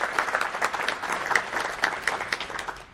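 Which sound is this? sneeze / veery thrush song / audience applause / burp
audience applause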